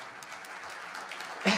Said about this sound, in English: Enough of the applause. What I was going to say, your applauding is messing me up, so don't do that anymore.